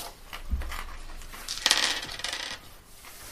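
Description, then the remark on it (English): A feat die is rolled and clatters across a hard surface, a dull knock followed by a bright burst of rattling and tumbling that settles after a couple of seconds. Fairly loud, with no voices. “Roll a feat dice, sir.”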